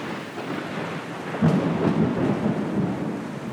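Thunder rumbles low and steady through a storm, swelling louder partway through, with a constant hiss of rain underneath and no voices.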